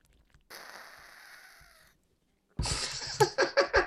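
Someone drinks water: a soft breathy hiss, a short pause, then loud rhythmic gulping with about four swallows in quick succession. No talking.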